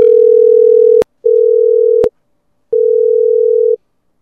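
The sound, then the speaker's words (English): A steady, low telephone dial tone hums in three bursts of about a second each as a call is placed, broken by short gaps and sharp clicks, with no voices present. “so I think we might need to make a phone call and check and see where everybody is.”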